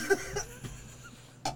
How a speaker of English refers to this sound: I just choked on my water. Man. Ain't about to have a cough on you.